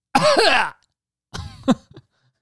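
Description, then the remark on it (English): A voice imitates a child's cough: one long, raspy, hacking burst, a brief pause, then a shorter pair of rough coughs trailing into a throaty sputter, fairly loud. “You know how kids just fucking cough?”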